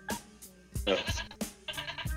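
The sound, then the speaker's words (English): Sheep bleating, two or three wavering, nasal calls in quick succession with brief gaps between them, fairly loud and with no talking over them. “Yeah, the sheep.”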